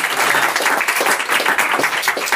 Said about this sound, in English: And College Pass, thanks for putting this on. This has been fantastic. If everybody could give them a round of applause.